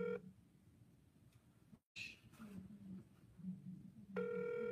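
An outgoing Google Voice call's ringback tone: a steady electronic tone sounds briefly at the start, then a quiet stretch of low murmur and line noise before the tone returns, clear.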